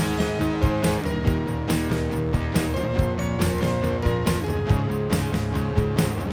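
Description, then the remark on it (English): A bright instrumental theme jingle for a mailbag segment plays at steady volume, with layered sustained tones over a regular, punchy percussive beat ticking through the whole stretch. No one talks over it. “Hold on a second, I'm just going to play the mailbag theme now.”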